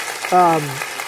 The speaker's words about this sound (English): Well, let's just give a big round of applause and thanksgiving to God.